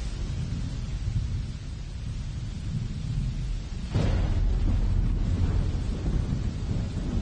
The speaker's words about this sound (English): on the morning of the third day, there was thunders and there was lightning. Can you imagine the scene that there were thunder and there was lightning? Can you imagine the scene of thunder and lightning?